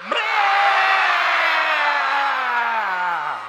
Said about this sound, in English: You didn't expect to come to church and yell like that, did you?